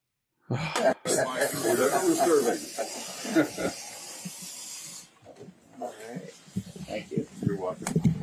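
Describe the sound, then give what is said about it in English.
An EPA official runs a tap into a sink in East Palestine, Ohio, with a steady, bright hissing rush for several seconds, then shuts it off, while people talk over and after it. “Now, folks, what you are seeing or not seeing if you are listening is an EPA official is pouring water out of a sink in East Palestine, Ohio, to all of these individuals.”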